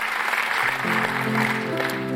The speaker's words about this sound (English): Let's clap for these people who just joined us.